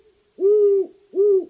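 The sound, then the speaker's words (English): A great horned owl hoots twice at night from bushes near a person lying in a sleeping bag by a car, deep, soft-edged calls about half a second each with a brief pause between, sounding close and clear against a quiet background with no talking. “At the same time, I was listening to the lone hooting of a great horned owl somewhere in the bushes near my head.”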